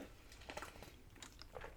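Quiet sipping of water: a few soft wet slurps and mouth clicks spread over a couple of seconds, with no talking.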